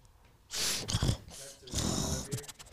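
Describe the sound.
A person's voice imitates a dog sniffing, with a quick run of four or five sharp, breathy snorts and sniffs, fairly loud, and no talking.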